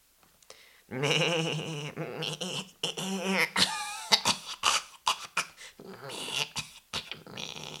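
A woman's strained, whining vocal sound gives way to a string of sharp, loud coughs coming in quick uneven bursts over several seconds; she coughs within 2 meters of another person.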